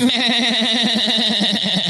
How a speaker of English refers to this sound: keep the goat sound effects on standby because we have another goat story about how there are fighting goats with huge horns that are blocking drivers in the UK.